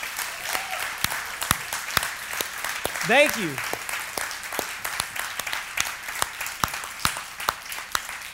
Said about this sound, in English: Can we just give an honoring round of applause to our veterans?